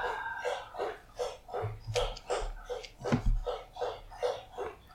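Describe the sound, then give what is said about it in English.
A dog laps water loudly, a steady, rapid rhythm of wet slurping splashes repeating about twice a second, with a few low bumps mixed in partway through. “Loud drinking, but I feel like I can't stop him right now.”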